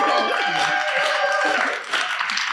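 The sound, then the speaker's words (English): Sustained applause from an audience for Chanda Smith Baker, a dense wash of clapping that stays loud and steady for a couple of seconds, with faint voices mixed in underneath. “Well, I was going to say, let's also give a round of applause for Chanda Smith Baker.”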